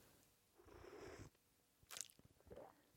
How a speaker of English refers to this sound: You got the slurp and the swallow. Was it gross? No, it was nice.